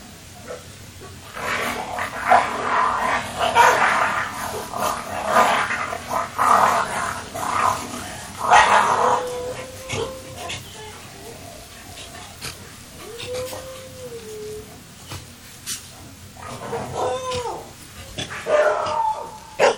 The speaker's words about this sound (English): Well, if you guessed it's a dog, you're pretty close. This is the dingo. And I guess besides the kangaroo, if there is one animal that is enigmatic of Australia. It is the dingo. It's a feral dog, a wild dog